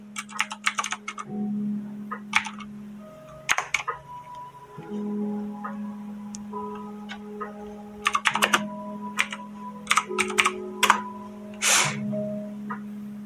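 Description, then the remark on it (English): Irregular bursts of crisp computer keyboard typing as someone looks up a definition online, quick clusters of key clicks separated by short pauses over a steady low electrical hum. No one speaks. “So you might hear me typing, but that is because I want to know exactly what I'm talking about.”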